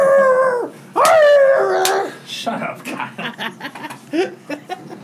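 A dog lets out two loud, drawn-out howls, each wavering and falling off at the end, followed by a stretch of choppier, softer vocal sounds.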